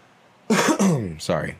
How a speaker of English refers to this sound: Sorry if I coughed on you.